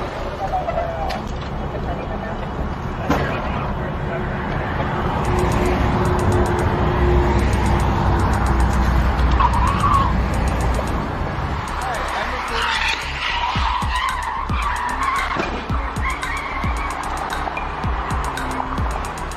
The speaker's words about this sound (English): In fact, I found a car crash that represents Joe Biden's presidency. Tell me if you agree. Take a look.